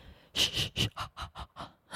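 Heavy breathing: a rapid, rhythmic run of about eight breathy huffs, hissy and fairly loud, with no talking over them.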